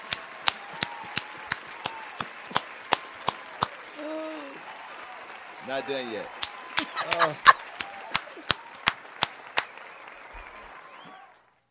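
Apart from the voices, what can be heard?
audience applause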